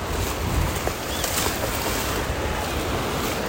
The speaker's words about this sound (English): I just got splashed, but it's okay because my phone didn't get wet.